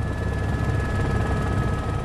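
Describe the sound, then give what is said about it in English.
A helicopter in flight on a clear, sunny day over snow-capped mountains, steep ravines and forest toward the Golden Mountains: a loud, steady engine roar with a deep rotor rumble and a thin constant whine, droning on without a break and no voices. “This is the helicopter?”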